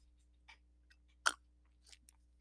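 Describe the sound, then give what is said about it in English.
Someone takes a swig of water: a few soft, wet mouth clicks and gulps, with one sharper, louder swallow in the middle, over a low steady hum and no talking. “Let me just get a little swig of water here.”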